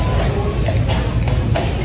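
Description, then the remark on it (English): A horse ridden by a man clops slowly across the floor of a Walmart store, making four or so sharp, irregularly spaced knocks over a steady low background hum. “He is riding a horse. Uh-huh. In the Walmart.”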